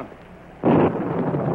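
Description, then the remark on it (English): A sudden, loud thunder clap cracks in over a steady storm hiss, then settles into a lingering low rumble. No one speaks. “Wait until there's another flash of lightning.”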